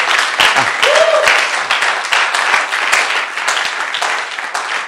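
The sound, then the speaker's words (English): A seated audience claps for Jesus steadily, a dense, sustained patter of many hands at even loudness, with a brief voice or cheer rising faintly through the applause near the start. “It's a good place to clap for Jesus as you are sitting.”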